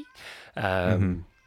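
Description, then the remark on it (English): A single drawn-out meow from a male cat that has been meowing on and off for hours, clear, preceded by a short breathy hiss of noise. “Can you hear that? Oh, I can hear the cat.”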